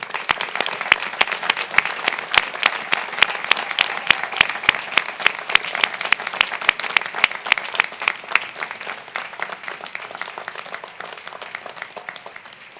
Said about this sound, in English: I would like to ask the graduates to stand, turn, and join me in a round of applause to honor and thank your family and friends.